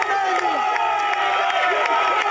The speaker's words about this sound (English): We got to cheer them on. We got to help them get all the way up there. It's something we have to do. We try to push them and get them running. People are walking. They're hurting. So we give them all we can to get them going.